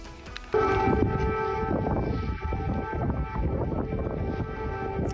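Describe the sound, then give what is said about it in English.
Air raid sirens wail across Kyiv during President Biden's visit, starting after a brief lull and holding a loud, steady wailing tone with rich overtones, while a low rumbling noise churns underneath throughout. “Biden sending a strong message of support to Ukrainians as air raid sirens wailed across Kyiv, underscoring the very real risk involved in this trip.”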